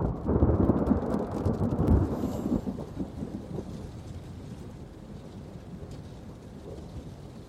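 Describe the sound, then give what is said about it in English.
A deep, loud roll of thunder rumbles over steady heavy rain in a city, peaking early and then fading into a long low grumble while the downpour keeps hissing throughout. “It's rainy as all hell.”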